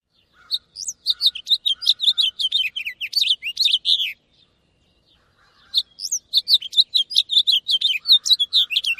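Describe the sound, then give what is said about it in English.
A house finch sings a rapid, warbling run of bright chirps for about four seconds, then after a brief silence a similar song from a Cassin's finch follows. Clear, with no voices. “First the house finch song, and then the Cassin's finch song.”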